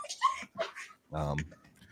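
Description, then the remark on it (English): A dog named Mortimer whimpers in the background in short, high whiny bursts, then lets out a longer, rougher bark-like yowl. “There's Mortimer, the dog in the background.”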